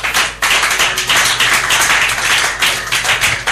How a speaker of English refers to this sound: Can we give this Lord his clap offering?